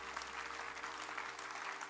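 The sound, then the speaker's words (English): A large crowd claps steadily, a dense wash of many hands applauding together without pause for the full length, fairly loud, with no voices standing out. “Clap for Jesus.”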